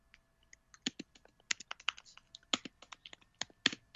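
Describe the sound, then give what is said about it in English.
Rapid, irregular keystrokes clatter on a computer keyboard, fairly loud, with sharp clicks of varying strength over about four seconds and no voices. “Oops, someone's typing away.”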